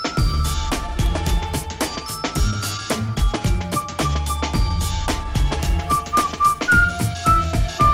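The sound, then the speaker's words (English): A bright, catchy jingle carries a whistled melody over a steady beat with sharp percussive hits, loud, with no voices. “Tell me you don't whistle along to that one.”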